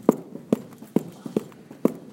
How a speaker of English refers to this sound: Reach your hands forward so your hoop is off of your left foot. So lift it up and stomp out your feet.